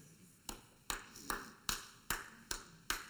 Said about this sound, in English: Thank you for that awkward clap.